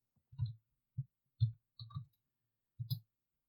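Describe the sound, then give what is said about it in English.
A few separate clattering knocks, five or six light impacts spread over a few seconds with short gaps, as a handful of 14 dice are rolled for accuracy in a game. No voices, quiet. “So that's three successes and 14 dice for accuracy.”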